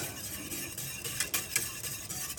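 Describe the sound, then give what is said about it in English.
A whisk stirs through liquid just come to a simmer in a pan while making pastry, a steady soft bubbling hiss broken by light, irregular scraping clicks against the metal. No one speaks. “It's now come to a little bit of a simmer. The bubbles on the edge of the pan. A ladle and a whisk.”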